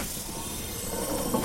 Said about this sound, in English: The pod door opened.